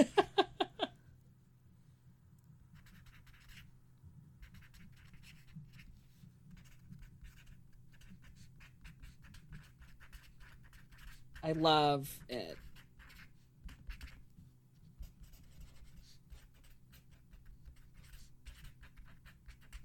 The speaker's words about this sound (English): Are you using a felt tip pen? I am. They're called name pens here. I love it. It's very like a good noise. ASMR? Yeah. Am I like scratching a little like brain? Absolutely.